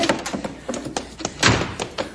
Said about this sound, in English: I'll get the cab door open.